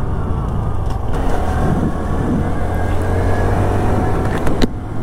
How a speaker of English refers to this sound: Engine seems okay. Don't think I damaged the case or anything.